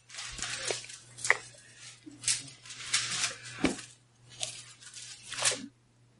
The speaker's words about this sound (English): There's some pages turning.